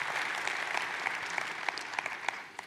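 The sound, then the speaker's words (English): An audience applauds steadily, a dense patter of many hands clapping with a few sharper individual claps standing out, fading slightly at the end. No one speaks. “It's so seamless, and we ought to clap for them because I'm so grateful for what they do.”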